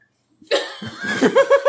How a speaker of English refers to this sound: We need to get you some, like, a lozenge for the podcast. You cough a lot. I don't think I've ever heard you cough at work like this. Are you okay?